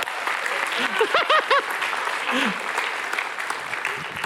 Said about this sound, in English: How about some applause for these guys?